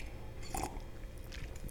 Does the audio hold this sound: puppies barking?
no